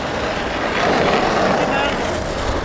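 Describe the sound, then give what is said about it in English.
A city Muni bus engine rumbles steadily with a broad hissing air-brake release as buses are stopped on Mission Street, amid constant street noise and faint, indistinct voices in the background. “Stop some muni buses.”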